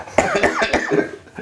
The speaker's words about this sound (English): By the way, we cough so much this episode, people are going to think we're smoking pot. No, we're really not.